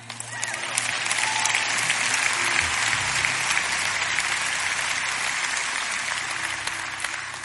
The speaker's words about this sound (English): You can clap for that.